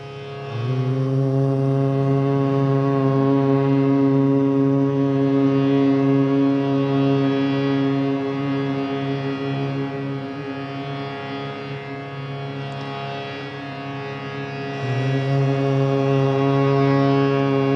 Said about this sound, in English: Just choose one technique and add the humming to it. Try to feel the vibration in your body.